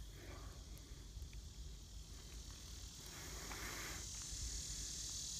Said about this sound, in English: Nothing but the cicadas, bro.